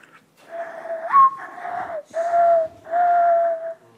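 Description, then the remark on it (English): A person imitates a mourning dove, whistling with both hands cupped around the mouth: low, breathy coos, four drawn-out notes, the first sliding upward before the others settle into steady, mournful tones. “Do you know what that one is? Morning dove.”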